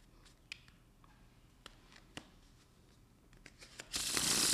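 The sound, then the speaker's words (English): Playing cards handled in quiet: scattered soft clicks and taps as the deck is cut, then a loud, dense riffling whir of a shuffle at the end, with no talking. “We're going to take the cards like this and just give a little cut and a little shuffle.”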